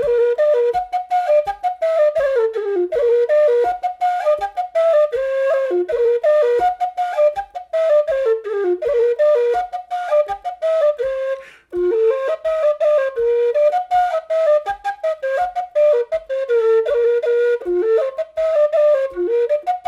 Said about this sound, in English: And here is the Oxford Ramble, again on that Jerry Freeman tweaked low F whistle.